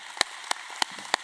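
Four sharp, evenly spaced hand claps ring out about a third of a second apart over a faint hiss, with no voices, like the start of applause rather than a full crowd ovation, as an audience claps at a preacher's request for those who pay the bills.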